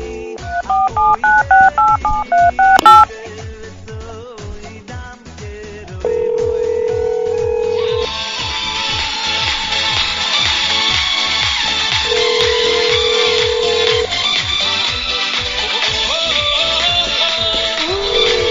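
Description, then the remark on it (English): A quick run of about ten phone keypad tones dialing Rabbi Yudkowsky's number, then long, steady ringing tones over a busy background with a regular low pulse; no one speaks. “Okay, let me call.”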